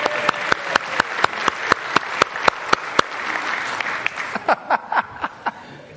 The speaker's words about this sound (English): We have one or two bank managers here. Let's give our bank managers a little bit of a clap.